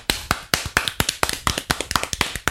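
A few people clap their hands together in a quick, slightly uneven burst of sharp smacks that continues steadily throughout, with no talking.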